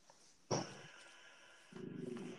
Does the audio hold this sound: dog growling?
yes